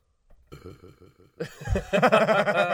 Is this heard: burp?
yes